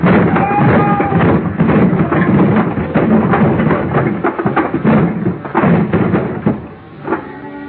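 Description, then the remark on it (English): A heavy, empty dolly is sent crashing into the bottom box of a high pile of wooden boxes ready for shipping, setting off a long, loud jumble of clattering, banging thuds and tumbling wood that keeps going for several seconds before tapering off. “I grabbed a heavy, empty dolly, gave it a flying start, sent it crashing into the bottom box of the barrel.”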